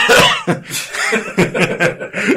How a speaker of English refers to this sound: I want to be known as the guy that coughs. Yeah. The guy that coughs.